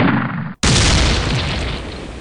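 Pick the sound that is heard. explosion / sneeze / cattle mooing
explosion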